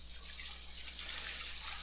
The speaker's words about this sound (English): That sound you hear is not only a toilet flushing, but the damn water running out of the gutters. That was good timing.